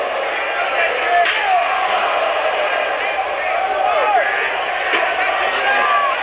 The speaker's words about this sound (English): Destroying the chair and destroying the backs of the Shield. I don't know how much more punishment Shield can take.